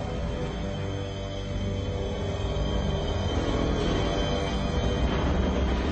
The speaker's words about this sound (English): See, now we cut to the train arriving and White Earp arriving, which is, of course, Kurt Russell. From that cut, the train station, however, was very small, and the line of the train, the railway line, is a very short.